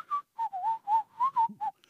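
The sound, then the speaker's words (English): A man whistles a short melodic tune, about seven clear notes in quick succession with brief gaps, fairly loud, with no talking. “What does it mean when you hear a man whistling while you're walking at night?”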